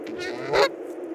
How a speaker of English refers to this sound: I am a goose flying south, and behind me, my goose compadres